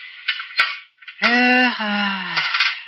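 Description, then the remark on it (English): A doctor's metal medical instruments clink against each other as they're handled and cleaned, with a few sharp clinks and a sustained metallic ringing tone that slowly fades. “This is the first chance I've had this week to clean a few instruments properly.”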